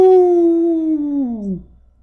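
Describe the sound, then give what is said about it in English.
A person lets out one loud, drawn-out howl, imitating a wolf. The pitch holds steady, then slides downward and fades after about a second and a half. “And if things get a little boring, take a few grams of mushrooms and howl at the fucking moon.”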